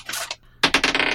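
dice being rolled

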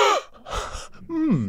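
human body sound, dramatic gasp

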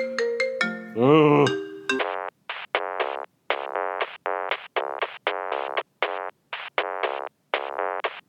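signal or alarm, mobile phone ringtone

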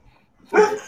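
animal, dog barking

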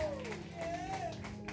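crowd, audience clapping

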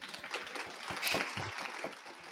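crowd, audience round of applause

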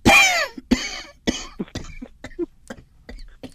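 human body sound, coughing

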